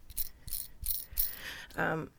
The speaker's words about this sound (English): It's a spinner ring that I have. It's like an anxiety ring. So you might hear that every now and then. I try to keep it quite still, but it's also one of those, it's an unconscious kind of fiddle that you do.